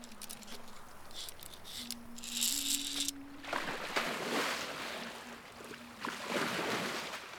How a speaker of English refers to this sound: The boat effortlessly dropped into the water on the starboard side, concealing it from the blockade.